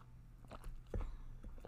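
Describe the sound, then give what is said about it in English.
A quiet sip of Vermentino wine from a glass: a few soft mouth clicks and a brief slurp and swallow over a low background hum, with no talking. “Okay, let me take a sip of my Vermentino.”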